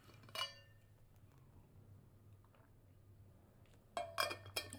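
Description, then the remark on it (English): A glass clinks once, then after a quiet pause several bright, ringing clinks come in quick succession as someone drinks water, all over a low, steady background hum with no talking. “Got to drink some water.”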